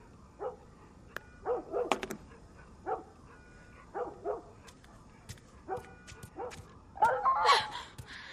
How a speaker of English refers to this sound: It's that, yeah, the dog crying out in pain and then stopping. Because the dog barking is just like part of the background noise,